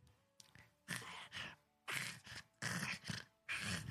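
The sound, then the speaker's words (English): A human voice imitates a creature howling something in a weird guttural language, a growling howl in four or five harsh, breathy bursts with short pauses between, fairly loud, with no clear words. “and it sort of turns its head back to the warehouse. Howls something in a weird guttural language you don't know about.”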